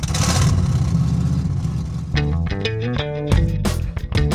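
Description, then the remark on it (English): An old automobile engine rumbles low, then coughs and sputters in uneven, choppy bursts as it catches and revs to life, loud, with no one talking. “Automobile engines sputtering to life.”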